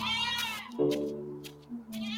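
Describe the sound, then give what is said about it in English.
A goat bleats in a long, wavering, nasal cry that shifts pitch partway through and carries on for a couple of seconds, clear with no talking over it. “That's a goat, right? Sounds like a goat crying.”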